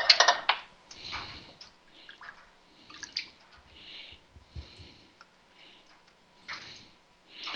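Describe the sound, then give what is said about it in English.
Canned pinto and black beans being rinsed in a small colander filled with water, the beans slowing the draining: uneven bursts of splashing water and soft rattling of beans, with short pauses between swishes and a faint steady trickle underneath. “And we're just rinsing them. Basically, I filled this little colander up with water.”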